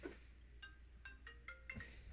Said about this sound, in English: Was my phone ringing.